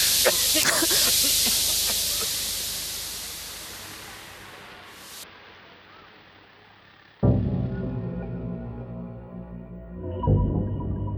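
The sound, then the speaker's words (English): Gas being pumped in hisses in a loud, steady rush that gradually thins out and stops after about five seconds; later a sudden deep rumbling noise starts and continues to the end. “They're pumping some kind of gas.”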